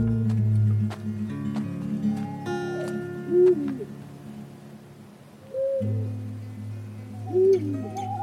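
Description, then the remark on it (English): An owl hoots several times at night outside while camping, in a slow, uneven series, the low, resonant calls standing out clearly against a steady, low background hum with no voices present. “When you're out camping, like, there's just always, like, twig snaps and, like owls hooting or whatever outside, and it takes a while to get used to.”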